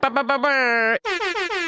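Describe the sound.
A voice imitates an air horn: a few short blaring honks, then a long sustained blast, followed by a series of sagging, falling honks, loud.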